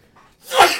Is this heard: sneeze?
yes